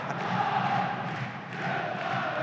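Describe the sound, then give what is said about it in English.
City fans at a football match cheer and roar in a steady, dense wash of many voices, holding a fairly even volume throughout with a slight dip midway before swelling again. “That's more like it, City fans. Give us some lungs.”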